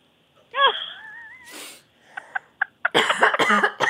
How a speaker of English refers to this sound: That made me cough.